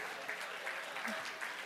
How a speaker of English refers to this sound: By the grace of God, we all stand here today. Let's clap our hands and thank the Lord.